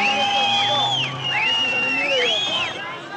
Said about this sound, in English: The Iranian capital, Tehran, a city scarred by rioting in angry protests against the Shah. And this is what happened in the streets below when they were taken over by huge crowds of demonstrators.